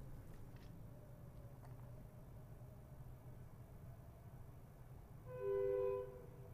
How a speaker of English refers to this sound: Train in the background.